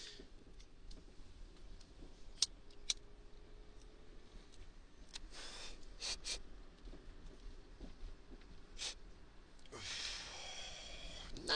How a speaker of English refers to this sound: So that's why I'm gonna take another hit.